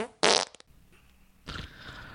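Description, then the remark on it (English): A loud fart blasts out, sputters briefly to a stop, then a second, rougher fart follows after a short pause, with no talking. “It's the Lo-Fi Show, where we're going to fart in your face.”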